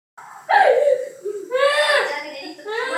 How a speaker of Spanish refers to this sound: Este es uno de los muchos videos que se vuelven virales en esa época. Se trata de un chico de unos 6 años llorando desconsoladamente. Su mamá trata de calmarlo. Hijo, le dice, no llores, Messi va a volver.